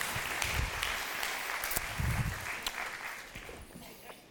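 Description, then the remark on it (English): A crowd of people stands and applauds steadily, a dense patter of many hands clapping at once that holds for several seconds before gradually thinning out. “Let's stand up. You can clap for them.”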